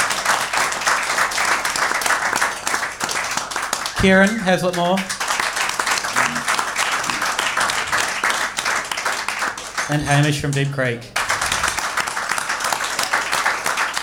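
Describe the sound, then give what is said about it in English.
A live audience applauds steadily throughout, a dense, loud wash of clapping that never lets up, while a man's voice twice breaks in briefly over it. “I'm going to get three different rounds of applause for three different amazing guests.”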